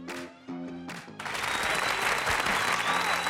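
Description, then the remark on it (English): After a brief stretch of harmonic tones, a live studio audience breaks into sustained, loud applause, a dense wash of clapping that holds steady to the end. “I thought you weren't going to get any applause there.”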